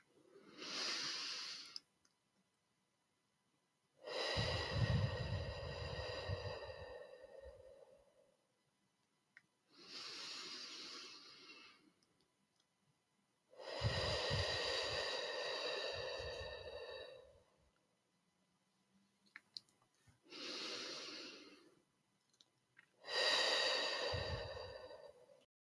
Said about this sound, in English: As you continue, just noticing again your belly rising on the inhale and falling on the slow exhale. I'll do a few together now with you.